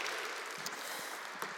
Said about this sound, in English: Let's also welcome online one more time. Let's give them a round of applause, wherever they're watching from.